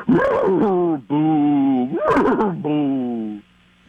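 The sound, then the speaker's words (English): A person imitates a ghostly, haunted horse, giving long wavering, moaning whinnies in four drawn-out phrases with breathy, rising and falling pitch, loud and alone, ending in near silence. “Okay, let me try a ghost horse”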